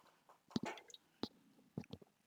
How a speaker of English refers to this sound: Hold on, I need to take a sip of my Red Bull.